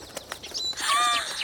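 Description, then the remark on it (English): A few quick bursts of flapping wings, followed by birds calling in overlapping warbling notes that swell and fill the second half, moderately loud, with no talking. “I hear birds!”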